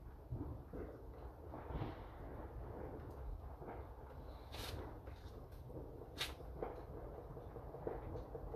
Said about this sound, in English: Now again, these aren't fireworks. These are all, I mean, some are probably fireworks in the background, but mostly gunshots going off.